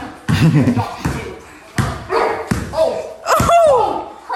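A dog barks and yelps in short, sharp bursts, defending its owner, while a basketball thuds repeatedly against a hard floor in a steady rhythm underneath.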